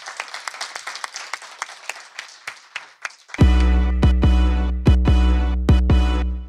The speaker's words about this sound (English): All right. With that, please help me in thanking my guest, Tim Urban, and give yourselves a round of applause for coming to this session.